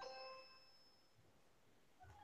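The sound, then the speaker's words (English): A Ring smart video doorbell chime rings once as someone presses the doorbell, its bright bell-like tone fading away over about a second. It sounds soft, followed by a faint low thump, with no voices. “It's my, it's my Ring doorbell. Somebody rang the doorbell.”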